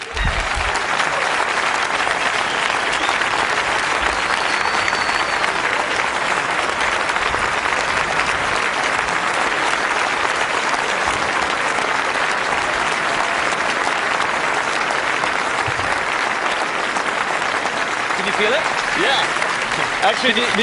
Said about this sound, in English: This is the first time I felt applause on the vest. It's nice. It's like a massage.